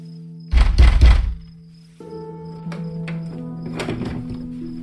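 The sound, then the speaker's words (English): A fist pounds a wooden door in a quick, heavy flurry of booming thuds, switching from one hand to the other, in a cold wind, then stops, leaving a steady low hum with a few faint knocks and clicks. “I pounded until I thought my hand might split open, then switched to the other hand.”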